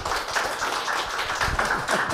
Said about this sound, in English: Big round of applause.